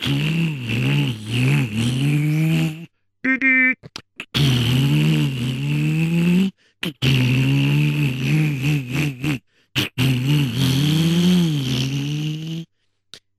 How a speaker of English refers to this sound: And so, sure enough, the Major, he went into this car that he stole and he started driving towards the reservoir.